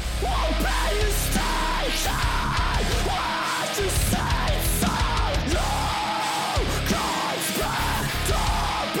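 Harsh screamed metalcore vocals over loud, dense distorted guitars and pounding drums, a heavy song intro that stays intense and continuous for the whole stretch.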